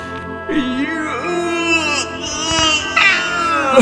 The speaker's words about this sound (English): It's getting so late. I feel like yawning again. You can join me if you want. One more big yawn, as big as we can.